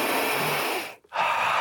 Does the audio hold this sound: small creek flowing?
no